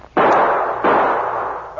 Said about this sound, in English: Pete fired two shots over the driver's head.